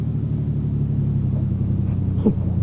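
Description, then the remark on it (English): A car engine rumbles steadily with a low, even drone as the car, turning into the Via della Scrofa late at night, slows to stop at the Borghese Palace, ending in a brief faint squeak as the vehicle eases down. No one speaks. “Slow down. Slow down.”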